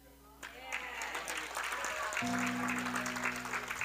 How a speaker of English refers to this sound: These are the great highlights that we had in 2019. So How Church, give yourselves a round of applause.